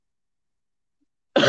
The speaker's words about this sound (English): Oh, sorry, I coughed.